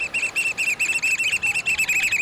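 A black oystercatcher, a stocky black bird with bright red eyes and a stout orange-red bill, gives a loud, rapid series of shrill piping whistles, about a dozen sharp notes in quick, steady succession, on a rocky shoreline of the Pacific coast, with no voices.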